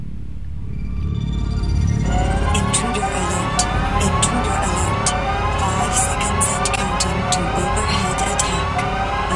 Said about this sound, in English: So here's the intruder alert.